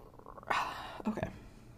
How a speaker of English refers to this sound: Yeah. One quick yawn, sip of water.